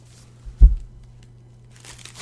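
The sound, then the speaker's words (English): Crinkling and tearing of a lot of packing tape wrapped around something glass, with a dull thump partway through and a burst of rustly, papery crackling toward the end; no one speaks. “I forgot that there's, like, a ton of tape on there.”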